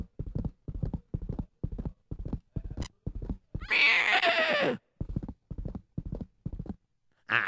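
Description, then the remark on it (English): Steady, rhythmic clip-clop of galloping horse hooves, about two beats per second, broken in the middle by a loud, high whinny before the hoofbeats resume. “Let me get on my horsey. And let me gallop away.”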